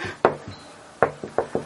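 Knocking on a door: a couple of sharp raps, a short pause, then a quicker run of four firm knocks, with no voices.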